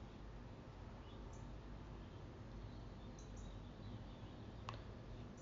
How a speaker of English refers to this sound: Just like these birds out here, you know, one rise up on the rest of them.